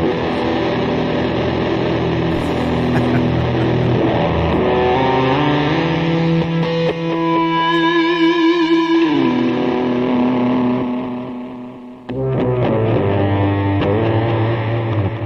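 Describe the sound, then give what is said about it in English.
Electric guitar run through heavy effects, giving a synth-like keyboard tone: sustained, shimmering notes with wavering pitch and chorus, steady and loud, a brief dropout near the end, no voices. “Sounds kind of like a keyboard.”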